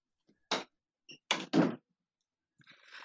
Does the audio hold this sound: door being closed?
yes